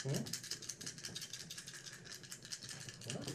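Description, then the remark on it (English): Dice rattling continuously as a woman shakes them for a roll, a dense, rapid clatter of bright clicks lasting a few seconds, with a faint murmur of voices underneath. “She's shaking them dice.”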